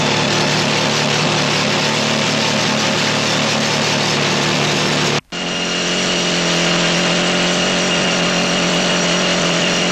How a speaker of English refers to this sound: These two rock drills were recorded 3 feet away. The first in a tunnel, the second above ground.